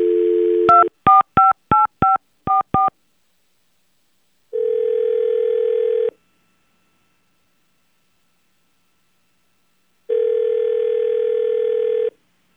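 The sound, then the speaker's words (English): A phone call is placed: a short dial tone cuts into a quick run of about seven touch-tone key beeps, followed by two long, steady ringing tones separated by several seconds of silence. No one speaks. “So we're going to call her now and figure it out.”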